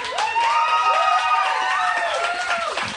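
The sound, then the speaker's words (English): Scattered audience applause with a few whoops and cheering voices rising over it, steady and fairly loud for about three seconds before thinning out. “It's a sparse applause for that.”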